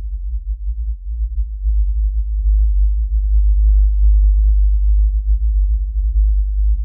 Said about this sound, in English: Let's give it a try right now and see how you do. Here's the whale.